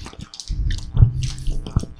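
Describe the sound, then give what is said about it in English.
Wet chewing of a hard, sticky strawberry-flavored taffy candy shipped from Turkey, with squishy smacking and small crunches repeating for a couple of seconds, with no talking. “It's very hard, but once you chew it up a little bit.”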